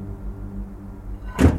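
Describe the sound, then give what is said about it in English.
A low, steady rumble fills the background, then a single sharp clunk and brief rattle as the handle of an old door with a rusted keyhole, unused for about two decades, is forced and refuses to turn. “I don't think anyone's used this door in at least 2 decades. I'm gonna give it a spin.”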